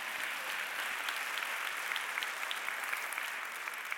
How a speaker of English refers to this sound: Could somebody say amen to that? Come on, somebody clap and say amen.